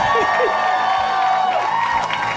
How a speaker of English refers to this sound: How about a round of applause for Greg Proops, everyone?